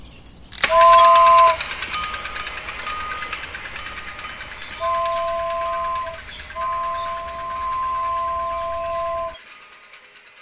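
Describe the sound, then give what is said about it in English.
A toy train ride at a zoo clatters along its track with a steady, rapid mechanical rattle, broken by a few sustained two-tone whistle toots. No one speaks, and the sound stops abruptly near the end. “So Nani and Mishti take the toy train again and go to where the fishes, turtles and seals are.”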